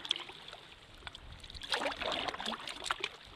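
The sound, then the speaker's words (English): Paddles dip and splash into the water of the River Dee in a steady rhythm of strokes, passing through large estates with anglers' huts at the water's edge, with soft trickling and sloshing between strokes and no voices. “Back on the Dee, and we're paddling through huge estates with huts for anglers to fly fish for salmon down by the water's edge.”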